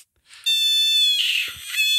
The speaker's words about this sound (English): Yeah, I mean, let me play you a clip of a giant screaming frog. That is, I believe, the name of the frog.